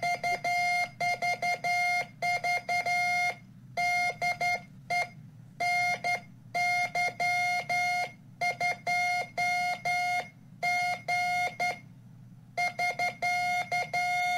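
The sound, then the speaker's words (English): Morse code tapped out on a telegraph key, sending a series of V's, a call sign, and then SK: a steady, mid-pitched electronic tone switching on and off in quick short and long bursts, with a few brief pauses between groups and no talking. “So I'm sending a bunch of V's, my call sign, and then SK.”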